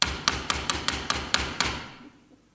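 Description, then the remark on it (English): A rapid run of about eight sharp knocks on a door, evenly spaced and fairly loud, followed by a short fading resonance and quiet. No one speaks. “Sounds like her knock.”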